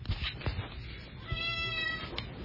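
A cat lets out a drawn-out, whiny meow, preceded by soft thumps and rustling as it gets into a suitcase, with no talking.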